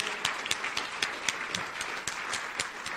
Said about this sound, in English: And let's go ahead and give a hand clap of praise for what has taken place.